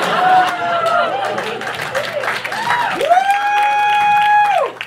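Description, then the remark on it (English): An audience bursts into steady applause and cheering, loud and sustained for about five seconds, with high rising whoops and shouts riding over the dense clapping. “That's not the ending, but I do deserve a clap for that.”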